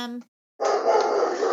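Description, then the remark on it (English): A male dog barks loudly, one short harmonic yelp followed after a brief pause by a longer, rough, sustained burst of barking. “At least he's got a big scary bark.”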